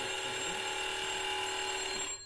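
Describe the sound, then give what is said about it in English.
A steady electric buzzer in a railway signal box sounds continuously for about two seconds, loud, with a bright harsh tone, then cuts off abruptly, signalling that an approaching down train is passing the distance signal. No one speaks over it. “That buzzer means he's passing the distance signal, which is a caution, because we can't clear the line right through for him, because there's going to be trains crossing.”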